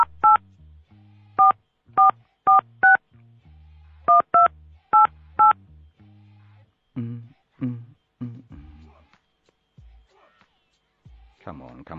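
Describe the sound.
A quick series of about ten sharp telephone keypad tones, dialed in two bursts with a short pause between, followed by a few muffled voice-like sounds; a phone number is being dialed again after the call went to voicemail.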